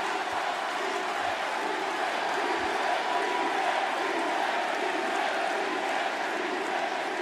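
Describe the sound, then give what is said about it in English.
A large crowd roars and cheers in a steady, dense wash of noise that holds at an even level throughout, with no distinct voices standing out. “Crowd loves it.”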